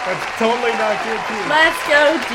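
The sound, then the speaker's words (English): Canned, prerecorded crowd cheers play steadily, several voices whooping and shouting over a wash of noise, fairly loud and continuous throughout the brief stretch, swelling slightly toward the end. “That's totally not canned cheers.”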